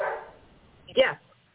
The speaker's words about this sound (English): Yeah. All right, well, my dogs may begin to sing for us in a moment in the background.